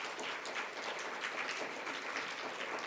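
An audience claps steadily in a dense, continuous round of applause, many hands creating a bright, crackling wash of sound that holds at an even level throughout.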